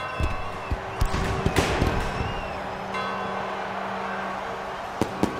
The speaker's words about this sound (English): Peace, as London's clocks rang out the 11th hour, was heralded by the booming of the maroon guns, scourges of the Zeppelins.